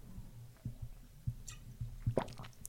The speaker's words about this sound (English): Let me take a sip.